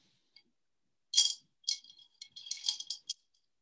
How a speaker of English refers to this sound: And then he breaks the thread, breaking the curse. He pours the beads into the glass.